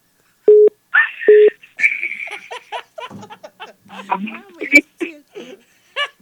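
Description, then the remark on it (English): Two short electronic phone tones, then a higher steady tone, as a call to the speaker's mother is dialed and rings through a handset, followed by faint voices talking over the line. “Mama, pick up the phone, girl.”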